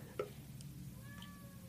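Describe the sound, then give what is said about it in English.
A cat meows faintly in the background, one drawn-out call partway through, over a steady low rumble and a quick soft knock near the start. “I just hear the cat in the back.”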